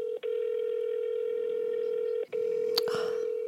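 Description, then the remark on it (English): A steady, buzzing phone ringing tone from a call to an unknown number, the phone held up to a microphone, cut by two brief gaps, with a sharp click near the end as the call connects. No one speaks. “I'm telling you, this day and age, no one picks up their phone from an unknown phone number.”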